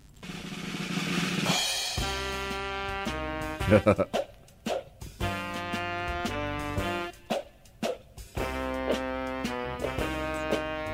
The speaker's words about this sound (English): this is all instrumental from his Battlefield Earth